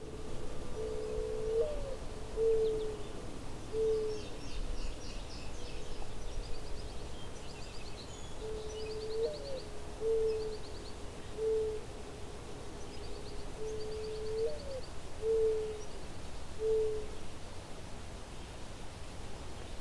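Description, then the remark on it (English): A mourning dove coos three times in the morning on a hedged road between two quarry pits in Halton, Ontario, each phrase a soft, low, mournful series of drawn-out notes, against a steady background hiss of wind or outdoor noise. “Its eponymous, mournful tones can be heard in most of North America in nearly any habitat where birds are found.”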